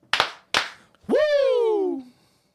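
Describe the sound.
Two sharp, loud hand claps about half a second apart, then a voice lets out a long, high Ric Flair-style whooping yell that slides downward in pitch and fades out.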